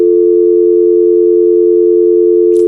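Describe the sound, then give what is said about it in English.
A loud, steady electronic tone on a phone line, droning without a break for a few seconds, like a busy signal, with a brief click near the end. “Let me go to line 7 over here.”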